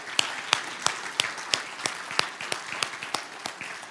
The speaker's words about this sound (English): Can we give them a round of applause this morning?